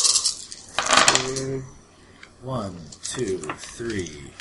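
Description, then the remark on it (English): A brief, bright clatter of nine dice tumbling across a tabletop, fairly loud, rolled for initiative in a tabletop game, followed by people talking. “Yeah, so you roll 9 dice, and you add every success onto 9.”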